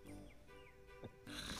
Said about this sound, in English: sprawled across his bed, snoring loudly.